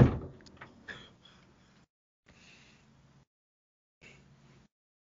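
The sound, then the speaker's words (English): A door slams shut with one loud thud at the very start, followed by a fading rattle and a couple of quieter, brief noises afterward; no one speaks. “We're just gonna ignore the fact that York slammed the door.”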